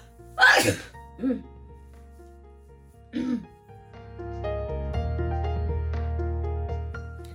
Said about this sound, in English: I'm about to sneeze.